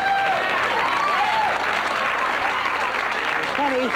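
Steady, loud applause from a large audience in the very last scene of the Bob Newhart show fills the whole stretch, a dense wash of clapping with faint whoops or cheers rising above it near the middle and end.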